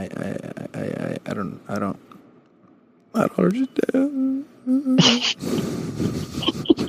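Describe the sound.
A voice whimpers and sobs into a phone in short, wavering high-pitched whines broken by sniffly gasps and a sharp breathy burst, loud, after a brief stretch of muffled talk and a pause.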